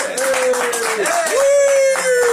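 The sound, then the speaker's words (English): An audience applauds with a steady, dense patter of clapping, while a sustained, wavering tonal voice-like sound carries over the top throughout. “I like applause.”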